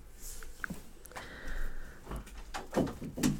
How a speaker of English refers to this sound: I knew he was going to open the door too. I knew he was going to do that. I knew that was going to happen.